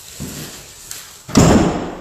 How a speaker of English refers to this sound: I'm going to close this door behind me.